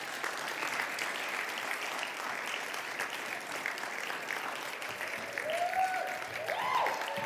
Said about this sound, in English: I want all of our Bible quizzers to walk in. Would you give them a great round of applause?